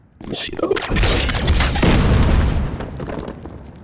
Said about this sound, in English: Yeah, I fired at the ceiling and buried them under some debris. It won't hold them back long.